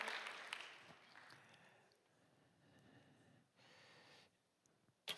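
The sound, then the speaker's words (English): An arrow shot from a bow strikes a yellow target bag with a single sharp, solid thwack near the end, preceded by a few seconds of breathy, hissing background noise and a brief whooshing burst. “And he's going to shoot from right here and he's going to hit the target.”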